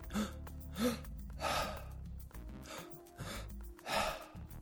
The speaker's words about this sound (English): I chose to breathe through the mouth.